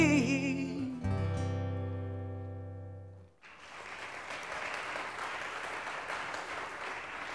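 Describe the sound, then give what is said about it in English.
A sustained musical chord rings out and fades, then a studio audience breaks into steady, dense applause that continues evenly for about four seconds. “Just checking if the applause sign was up.”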